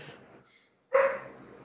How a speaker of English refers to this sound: Puppy barking.